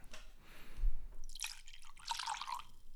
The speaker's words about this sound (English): And you can't tell, but every time he pours whiskey, he twists the bottle at the end because he has training in the food service industry.